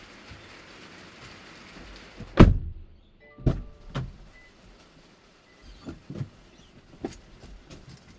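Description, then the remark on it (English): A car door opens with a heavy thump as someone gets out of the car, followed by brief electronic warning beeps because the start button was left on, and several more clunks and knocks over a steady rain-like hiss. “Just heard the car getting cross at me because I got out of the car without turning off the start button.”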